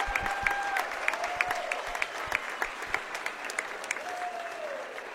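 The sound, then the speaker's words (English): A crowd claps in a steady, dense round of applause for Amity's 1999 state volleyball champions, sharp hand claps blending into a continuous patter with a few faint whistles rising above it. “And a round of applause, please.”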